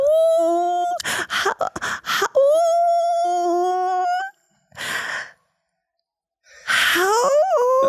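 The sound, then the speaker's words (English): A person imitates a wolf howl: long, steady mid-pitched vocal tones that slowly rise, broken by sharp breathy gasps, then a pause and one more rising, wavering howl. “And you, as you howling, your howl slowly becomes a real wolf.”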